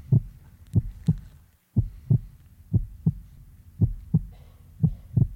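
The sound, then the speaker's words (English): A steady heartbeat thumps in muffled lub-dub pairs, about one double beat per second, five or so in a row, with nothing else around it. “You know, at the very core of our lives, the beating heart, right?”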